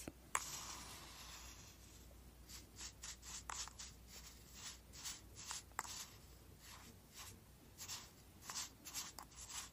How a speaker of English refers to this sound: So I'm going to take the spoon that it came with. It's like little sand. Mixing it just a little bit. Make sure I get the natural ingredients.